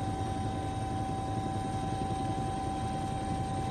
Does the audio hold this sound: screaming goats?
no